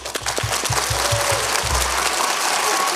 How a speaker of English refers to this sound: We ask you to applaud generously when Wheezy enters with the applause sign.